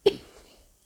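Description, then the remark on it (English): A single short, sharp cough from a six-year-old child, fading quickly into near silence with no talking around it. “And you are coughing, aren't you?”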